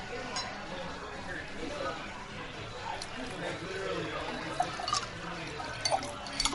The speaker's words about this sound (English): Oh, I need a refill, please. You need to refill some water. Other water, yeah.